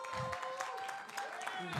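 A round of audience applause, steady dense clapping from many hands at a modest level, with a faint sustained tone running underneath.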